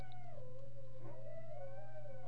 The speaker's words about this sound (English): Sorry, the dogs are howling.